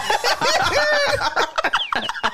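A segment jingle for For the Birds: several hens cluck and squawk together in a dense, hoarse, raspy chorus, loud, with wavering pitch that sounds strained and sickly before breaking into choppy bursts.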